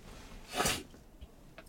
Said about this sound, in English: I had to blow my nose.